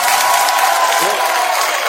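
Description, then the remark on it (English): A crowd cheers and applauds in a loud, dense wash of clapping and shouting voices that holds steady for the whole two seconds. “and he gets a big pop from the crowd because it's true.”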